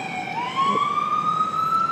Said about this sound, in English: If you spent your whole life and every day of your life in New York hoping that everyone was okay every time you heard a siren, you'd have little time for anything else. You get numb to it.